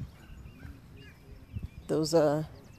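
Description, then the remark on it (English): Outdoors in Columbia on a 71-degree day, over a low, steady rumble, faint high bird chirps come and go before a loud bird call rings out near the end with a quick warbling, trilling quality. “So, yeah, I know we're just listening to nature, but you hear the birds.”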